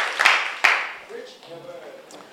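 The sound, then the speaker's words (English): A church audience claps together for the Lord in a dense burst of hand claps that quickly fades out, followed by someone speaking over quiet. “Why don't you clap your hands together for the Lord, and you may be seated.”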